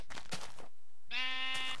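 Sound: sheep bleating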